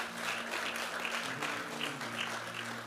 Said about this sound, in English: Give the Lord a clap offering, someone.